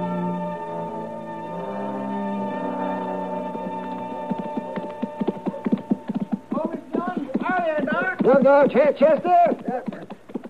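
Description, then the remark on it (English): Steady clip-clopping hoofbeats of a good-looking horse ridden by Chester come in after a sustained musical chord, growing louder in an even trotting rhythm as the rider approaches, with a voice speaking over them near the end. “It's a good-looking horse Chester's riding, Matt.”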